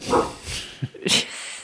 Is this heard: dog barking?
yes